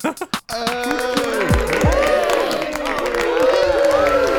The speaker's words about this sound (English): The crowd goes absolutely buck wild. They're not concerned at all that some of the background dancers aren't doing great. They're just enthralled by that rap.